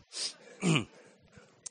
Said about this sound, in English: I'm going to take a second and swallow this cough drop that I didn't quite finish. That was gross.